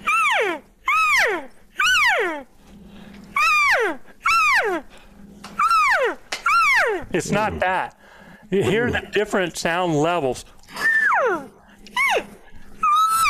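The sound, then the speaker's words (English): A hand-blown game call repeats short, high chirps and drawn-out mews in a varied cadence, loud, with a man speaking briefly between some of the calls. “You heard a little chirp, heard a little mew, right?”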